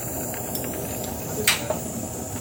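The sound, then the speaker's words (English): Faint fizzing crackle of an ice cube in water over a steady hiss, with two small sharp pops close together near the end; no one talks. “Is your water? What are you talking about? The ice cube.”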